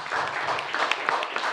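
An audience breaks into sustained applause for a poet, a dense wash of many hands clapping at once with scattered sharper claps rising above the steady patter throughout.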